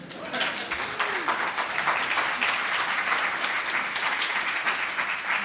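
An audience claps steadily throughout, a dense, even patter of many hands at a consistent loud level with no break, with some faint crowd voices mixed in.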